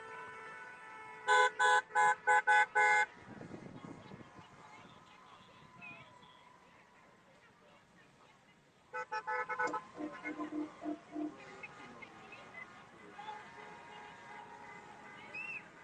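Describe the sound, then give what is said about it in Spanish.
A procession of cars passes through Doral, Miami, with rapid bursts of horn honking, several quick toots in a row, then another flurry later, over a background of traffic noise and voices. “Siguen los autos, Y esto aquí está lleno completo, el 87 completo.”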